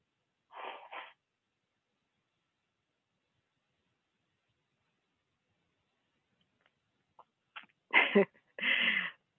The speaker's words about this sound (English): Whenever I have to blow my nose when I'm giving teachings, I think about a time when I was in ministry school